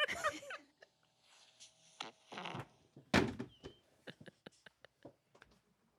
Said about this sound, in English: Fucking farted.